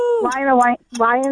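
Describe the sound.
A human voice imitates a wolf howl as a guessing-game clue for the film Wolf of Wall Street, in two short, loud, sustained tones, the first sliding down in pitch before leveling off, with a brief pause before the second.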